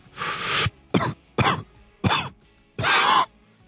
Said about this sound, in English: cough. Got a cough to get off, bro.